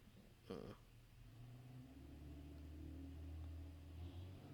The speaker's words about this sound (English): Can you hear that truck? I did, and now I can't. It was aggressive. It was very aggressive.